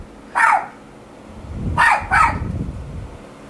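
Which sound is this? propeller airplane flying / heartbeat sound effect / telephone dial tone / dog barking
dog barking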